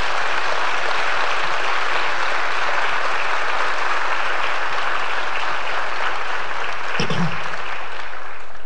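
An audience claps steadily and loudly, a dense wash of many hands that holds for several seconds, with a brief shout or cheer cutting through near the end.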